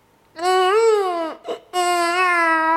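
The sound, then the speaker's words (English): A person imitates a newborn infant's cry: two loud, wailing bursts with a brief catch of breath between, a sustained, nasal waah sound. “That, I think, in comparison to yours, sounds more of like a newborn infant.”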